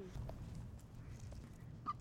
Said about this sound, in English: Oh, the duck is back. Hello, duck.